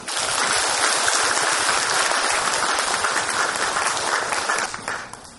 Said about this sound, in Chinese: 接下来就让我们以最最热烈的掌声欢迎索达吉堪布为我们带来演讲。